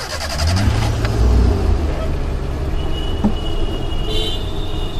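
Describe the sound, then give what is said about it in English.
An old, scruffy white Ambassador car, an Indian classic, rumbles loudly as its chauffeur pulls away, its low engine drone steady and continuous, with faint road traffic in the background. “The chauffeur shuts the door of his scruffy white ambassador car, an Indian classic, and off we go.”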